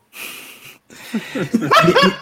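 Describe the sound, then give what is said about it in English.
A dog lets out a quick string of high, yelping barks and whines, fairly loud, after a brief burst of hissy noise. “Will you go talk to the dog?”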